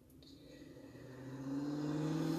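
A police car's engine revs and whines as it drives fast through a parking lot, turning around, growing steadily louder over a couple of seconds, with a rising hum and no voices.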